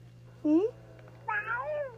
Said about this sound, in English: You do? You hear the kittens? You hear the kittens? Yeah.